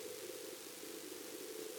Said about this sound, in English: Korolev needs to hear Sputnik's transmission to confirm the satellite is in orbit. But so far, what they're getting on the radio is static.